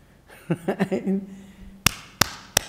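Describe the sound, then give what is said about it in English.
Three sharp, loud hand claps in an even rhythm, each a crisp isolated crack, following a short stretch of a voice vocalizing without clear words. “We hear the sound of the clapping.”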